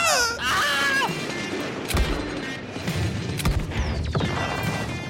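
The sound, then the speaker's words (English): A Wilhelm scream rings out at the start, a loud, high yell with a falling pitch, followed by several sharp gunshots and crashes over a busy, noisy backdrop in the style of a classic Western movie. “And there's a Wilhelm scream.”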